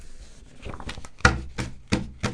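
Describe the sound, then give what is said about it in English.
Papers being shuffled: crisp rustling that builds into four brisk, evenly spaced swishes with soft thumps, as if a stack is straightened. No one speaks. “That's me shuffling my papers, buying a little time to figure out how I'm going to get out of this bit.”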